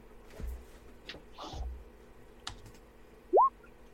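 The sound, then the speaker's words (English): Dice rolled in a game to decide a hunting attempt rattle in a few separate clicky taps at moderate volume, followed by a short, loud rising electronic chirp. No one speaks. “You've got a 1 in 6 chance, so round of dice.”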